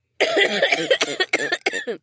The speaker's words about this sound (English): Don't cough too hard; something might come out of there.